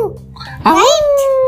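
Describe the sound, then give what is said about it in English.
A person mimics a wolf howl: after a faint murmur, a loud voiced cry swoops upward and then holds a steady, mid-pitched wail until the end. “Those I thought it's the... what wolves make.”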